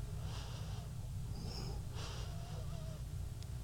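A few soft, airy bursts of breathing in through the nose, unhurried, drawn in over a steady low background hum with no talking.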